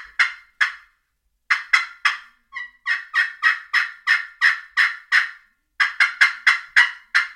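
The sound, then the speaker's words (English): A rapid run of sharp, raspy turkey yelps scratched out with a peg on a glass friction pot call, delivered in several loud bursts separated by short natural pauses, with no talking. “box call or with a glass friction call pot and peg like the exterminator.”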